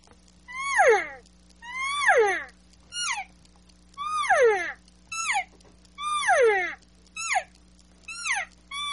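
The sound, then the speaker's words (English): Someone imitating a mature elk cow call: a series of high, nasal mews that drop sharply in pitch, longer drawn-out calls alternating with short chirps, clear and steady with a low hum underneath. “So when you're looking at goals, again, when we're talking about how to practice, that you hear that cow call, a little more maturity in the voice, a lot more drop.”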